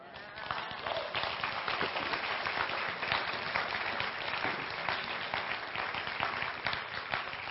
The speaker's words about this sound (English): You clap now. Wait till I figure out what to do with the rest of that energy.